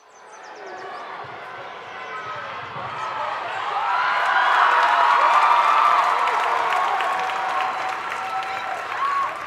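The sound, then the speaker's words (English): A crowd, including a boy's parents, cheers and claps steadily for a child competing for a medal, the noise swelling after a few seconds into a loud, sustained roar with scattered whoops and a dense patter of applause that continues to the end. “His parents are cheering him on and his older sister says, "Come on, you've got this."”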